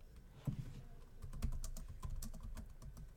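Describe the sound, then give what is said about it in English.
Rapid, irregular clacking of keys on a computer keyboard, struck fairly hard, with a steady busy rhythm and no voices. “I hear somebody pounding on the keyboard.”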